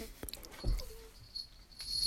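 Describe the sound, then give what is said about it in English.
A small bell on a pet cat's collar jingles faintly in short, irregular bursts, with light tinkling tones over soft rustling and patter; no one speaks. “I'm sorry if you can hear my cat. His bell's ringing.”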